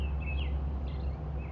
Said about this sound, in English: Now you hear this, the sound of these birds out here singing. Birds are a spiritual sign from God. Every morning they wake me up.